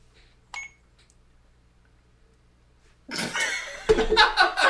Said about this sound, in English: Down, and then when you let go, it records. So hold down, you hear beep, it started recording. You say what you want, and then let go.